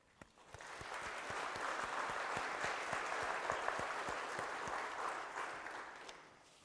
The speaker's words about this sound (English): So let's give our small group leaders a round of applause.